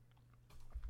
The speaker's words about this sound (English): Sip of my grape juice.